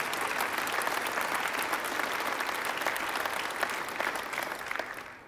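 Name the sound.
audience cheering and applauding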